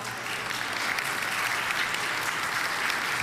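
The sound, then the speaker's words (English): An audience claps steadily throughout, a dense, even wash of many hands with no one speaking, holding a consistent loudness from start to finish. “Before you clap too hard”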